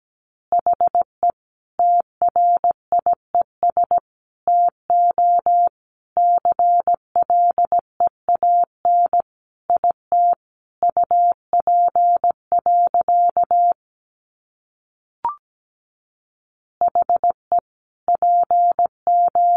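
Morse code sent at 17 words per minute as a steady, mid-pitched beep in short and long bursts at a moderate, even pace, with brief pauses between groups and no voices.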